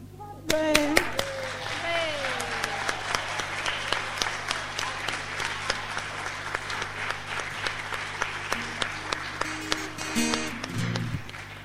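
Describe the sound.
A church audience claps steadily for several seconds, thanking the junior church and young people for their Christmas story performance, many hands producing a dense, continuous patter of applause, with a few voices briefly audible underneath.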